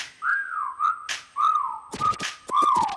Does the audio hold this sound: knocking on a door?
no